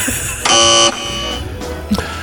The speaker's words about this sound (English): I have a funny feeling these are all going to be buzzers, but there we go.